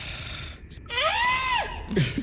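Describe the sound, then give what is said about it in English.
A person lets out a single loud, strained scream imitating a goat, the voice rising and then sagging off in a harsh bleat lasting under a second, with a short grunt just after. “And in order to undercut Kyborg's attempt at sounding cool, I just scream again as a goat. Which sounds like...”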